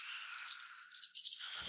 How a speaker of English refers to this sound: Alright, yeah, I'll roll... Since it's the same dice pool, I will roll 5 dice, plus Boston for a full 10.